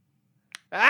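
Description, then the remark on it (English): A short click, then a loud, harsh electronic cawing from a plastic toy bird, its raspy pitch sliding upward and holding strong until the end, with no one talking. “Where's that plastic bird who loves me and never says bad things to me?”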